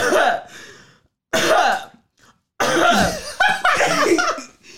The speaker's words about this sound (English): Wait, for me to cough three times, yeah, notice the time difference.